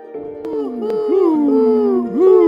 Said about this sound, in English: And that is the owl.